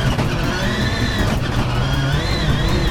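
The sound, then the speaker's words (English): A rallycross race car engine revs hard and continuously, its harmonic whine rising and falling with gear changes, loud over a dense roar of other engines, as driver Bucky is under attack from Patrick Sandell and stuck in race traffic. “Bucky is immediately under attack by Patrick Sandell and stuck in the traffic.”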